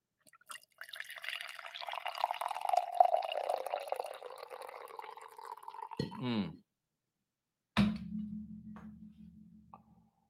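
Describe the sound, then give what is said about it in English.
Coffee pours steadily into a Cash Game King mug for several seconds, the pitch rising as it fills, then stops; a brief clink follows and a low hum lingers. Clear, with no talking. “So let's pour into the Cash Game King mug, which is available in the store”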